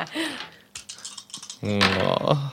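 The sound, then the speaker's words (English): A quick burst of dice clattering and tapping on a tabletop as they are rolled, moderately loud, followed by a person's voice speaking over the end. “Just a lot of dice rolls.”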